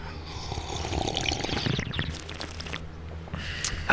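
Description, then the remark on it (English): Someone sips coffee, giving a wet, gurgling slurp of liquid that runs for several seconds at moderate loudness, with a brief sharper noise near the end and no talking. “Let's take a sip of coffee.”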